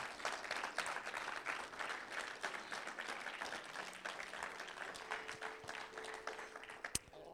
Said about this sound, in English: Let's give the word of God a hand clap of praise.